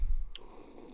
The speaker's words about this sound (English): Cheers. All right. You hear that? We're gonna sip here.